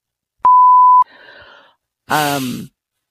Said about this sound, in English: I'm gonna bleep that out on purpose just so it sounds like you're swearing.